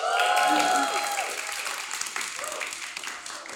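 A crowd bursts into cheering and applause, with high whoops and shouts over dense, steady clapping that eases slightly toward the end.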